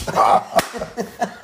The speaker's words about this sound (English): I just got the shit slapped out of me